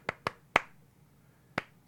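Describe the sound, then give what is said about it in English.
Five sharp knocking taps imitating a cartoon character knocking on all the walls as he goes around the house: a quick group of three, a pause of about a second, then two more. Crisp and dry, with no talking. “right there, yeah, with he's knocking on all the walls. He does the tap where it's like...”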